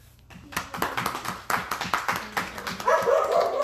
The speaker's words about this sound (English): And those dogs. Always in it.